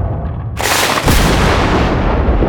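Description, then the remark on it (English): A sudden, loud thunderclap bursts in after a low rumble and rolls on as a heavy, sustained crackling roar with deep booming undertones, no voices present. “That sounded like a thunderclap.”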